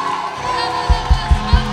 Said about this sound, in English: Then I charge you one more time. Clap your hands, all you people. Shout unto God.